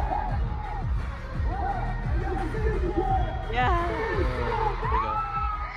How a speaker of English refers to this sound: Okay, sorry, that was me. Sorry, the scream.